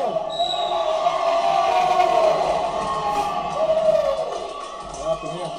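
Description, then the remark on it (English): A basketball arena crowd, on its feet, roars and cheers steadily throughout, a dense wash of voices that swells briefly near the end, with scattered court sounds like ball bounces beneath. “Crowd is literally on their feet.”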